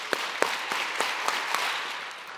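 A crowd claps in unison when asked to clap seven times, a run of about six or seven sharp, evenly spaced claps at roughly half-second intervals, over a wash of scattered, looser clapping that fades out at the end. No one speaks.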